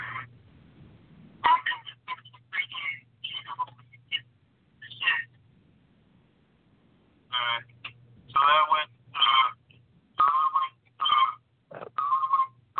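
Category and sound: signal or alarm, skype call ringtone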